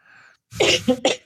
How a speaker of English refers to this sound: excuse me 1 minute, I have to cough.